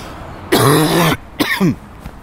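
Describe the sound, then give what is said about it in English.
Two raspy coughs: a longer, harsh hack followed by a shorter, throaty one, with no talking around them. “Sorry, I have a bit of a cough.”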